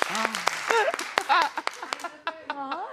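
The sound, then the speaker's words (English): Scattered, uneven claps from an audience as they answer the host's request to clap if they know who Millie Bobby Brown is: sharp irregular smacks mixed with overlapping voices calling out and cheering, moderately loud over about three seconds. “Do you? Clap if you do.”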